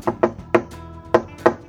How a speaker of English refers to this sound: there's someone knocking on your fucking door. Wake up!